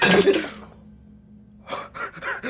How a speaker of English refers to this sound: And we break the glass live on YouTube.